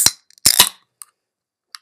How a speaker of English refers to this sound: And then, obviously, I got my... the can that I'm going to open right now, it's a holiday canned water. So I'm going to open that now.